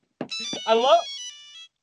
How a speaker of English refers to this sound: That is totally the fucking phone ring from the Spinosaurus. It just says Nokia ringtone. Oh my god, that actually is. That's the exact one, isn't it?